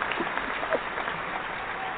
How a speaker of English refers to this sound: So without further ado, let's give a hearty round of applause and welcome to the show,